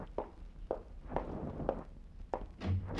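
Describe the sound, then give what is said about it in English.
Six steady footsteps thud across a floor at an even walking pace, followed at the end by a heavier low knock and rumble as a door is opened. “Open the door for him”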